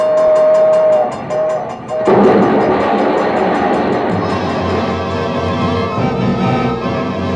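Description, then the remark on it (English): A train horn sounds in short blasts at a railroad crossing, then a loud rumbling train rushes past with a steady clatter, while a high ringing crossing bell keeps pulsing throughout. No one speaks. “We're coming to the they crossing. Say it's There's quiet a train.”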